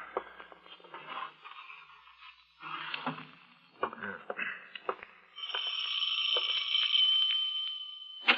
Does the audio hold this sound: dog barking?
no